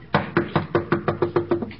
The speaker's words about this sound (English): if you heard a knock on the door